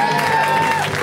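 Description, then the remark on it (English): An audience claps and cheers in a steady, dense, loud burst of applause for comedian Matt Ingebretson as he is brought to the stage, filling the whole second with a faint sustained tone running underneath. “A round of applause, everyone, for Matt Ingebretson.”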